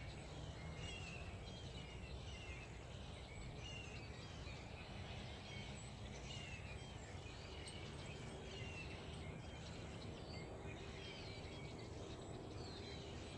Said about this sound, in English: That's right. The birds are singing outside. I am walking our dogs right now, and I had to come on here and let you guys listen to how happy the birds are this Monday morning.